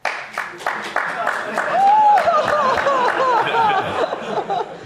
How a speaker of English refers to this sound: Okay, what are we missing? I think they're just getting tired of clapping.